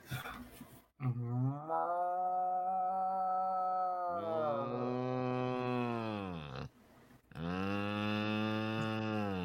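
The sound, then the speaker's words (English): A person imitates a cow, letting out three long, drawn-out moos in a row, loud, each sustained for a couple of seconds with brief breaks between them. “we're mooing. We're mooing. Give us a moo”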